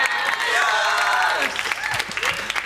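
A round of applause: dense, steady clapping mixed with voices cheering, loud at first and then thinning into scattered claps toward the end.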